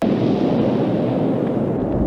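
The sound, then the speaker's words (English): A loud, steady roar of real fire from a practical movie explosion made without CGI, a dense low rumble that churns without a break for the whole clip, with no voices over it. “This is, again, another great practical, like, explosion. No CGI here, this is real fire.”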